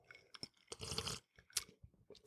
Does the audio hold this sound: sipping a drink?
yes